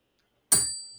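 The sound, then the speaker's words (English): A single sharp metallic ding from a kitchen sink strikes loudly, then rings out with a bright, sustained high tone that slowly fades. No talking. “My sink. Jesus Christ. It was chiming us into the new year, buddy.”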